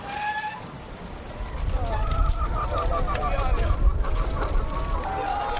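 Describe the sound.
Chickens of a Sicilian chicken farmer, waiting to be trucked to market, cluck and chatter in a flock over a steady low rumble of background noise, with some indistinct voices mixed in.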